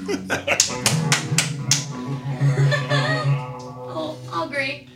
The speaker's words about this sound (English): Yes, indeed. I will applaud for that.